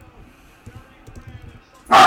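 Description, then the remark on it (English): A single loud dog bark bursts out suddenly at the very end, after a stretch of quiet low background rumble. “My dog is like heavily in favor of the 60-minute time limit draw.”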